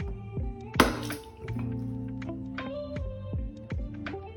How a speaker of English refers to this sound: Then transfer coconut water into a glass.